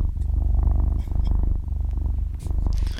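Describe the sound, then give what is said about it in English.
A recording of a cat purring in a steady, rumbling rhythm, the low vibrating pulses continuous for a few seconds with only faint background noise. “Do you mind if we put on Cats Purring instead?”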